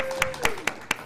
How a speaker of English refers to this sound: We are live from Pittsburgh. Come on, everyone clap. Yay!